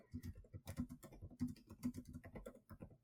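typing on a keyboard

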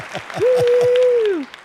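applause sound effect

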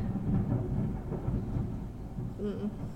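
roll of thunder

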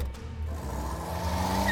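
car accelerating away

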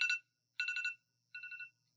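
alarm ringing

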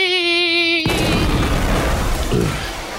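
explosion blast

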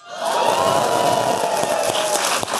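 audience cheering and applauding

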